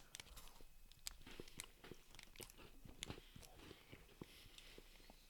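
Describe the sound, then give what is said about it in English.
Crisp crunching as a Twix chocolate bar is bitten and chewed, with sharp irregular cracks and mouth noises repeating steadily over several seconds, no talking. “Oh yeah, there's some crunch in this one.”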